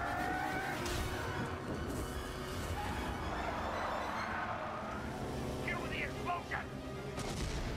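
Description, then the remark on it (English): In a video game, the engine of the car that Dash was driving roars steadily through a dense action mix, with bursts of gunfire and booms layered over it and faint voices underneath. “Yeah, that's the car that Dash was driving.”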